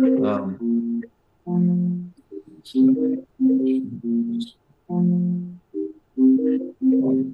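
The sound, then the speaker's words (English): Someone else's phone plays back audio of a voice speaking in steady phrases with short pauses. It comes through clear and fairly loud, with no other sounds around it. “Someone else's phone playing.”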